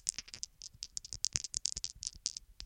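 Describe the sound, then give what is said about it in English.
Dice rattle and clatter in a rapid, irregular burst of sharp, bright clicks lasting a few seconds, fairly quiet, with no voices over them. “Let's skip the formalities and go straight to rolling some dice.”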